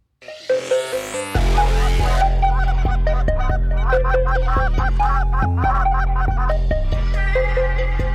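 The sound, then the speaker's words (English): A goose call blows rapid, repeated high honks and yelps that imitate snow geese, loud, running continuously over a steady low droning background. No one speaks. “did you know that's me goose calling right there?”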